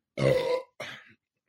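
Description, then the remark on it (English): A loud burp rumbles for about half a second, then a shorter, softer second belch follows after a brief pause. No one speaks. “Maybe a prize for whoever counts how many times I burped in this episode.”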